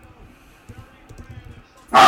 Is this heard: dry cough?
no